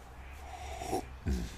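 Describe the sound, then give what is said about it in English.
A dog gives two short, breathy snorts as it walks by, a brief pause between them, against a quiet, low background hum with no one talking. “There's my puppy dog walking by.”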